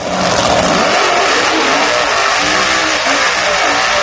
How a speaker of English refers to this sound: Actually, the sound effect should have been road race cars, but drag racing's okay. We'll go with that.